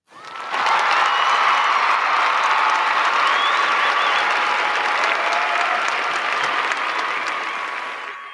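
An audience breaks into sustained applause for a hip hop artist's hard work for his community and fans, a dense wash of many hands clapping at a steady loud level for about eight seconds, with faint cheers mixed in before it tapers slightly at the end.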